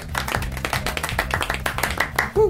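A modest patter of hand clapping from a small group on the show Gareth Jones on Speed, for Formula One world champion Lewis Hamilton, quick and steady, moderately loud, with a brief vocal exclamation at the very end.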